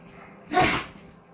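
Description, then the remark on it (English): A dog sneezes once, a short, sharp, breathy burst standing out against quiet surroundings, with no one talking. “Oh, my dog sneezing.”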